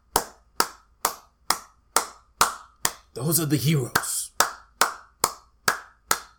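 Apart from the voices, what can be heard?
people clapping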